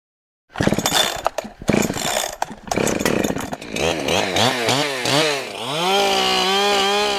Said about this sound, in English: looks pretty comfortable wielding a 28-inch chainsaw as he makes quick work of the tree in front of him.